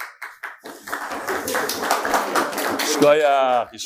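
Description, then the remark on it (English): A crowd breaks into applause as a raffle is presented, starting with a few scattered claps and swelling into a dense, steady burst before a voice speaks over its tail. “It's nothing to clap about.”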